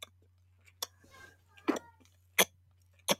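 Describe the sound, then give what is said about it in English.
A person imitates a little boy's hunger cue, making four sharp, wet mouth clicks by sucking the tongue with lips closed, unevenly spaced, with a soft breathy rustle between the first two and a low steady hum underneath. “I had one little guy, I can't do it, but he sucked his tongue and made a clicking sound with his lips closed. So it sounded like this.”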